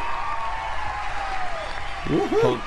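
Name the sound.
applause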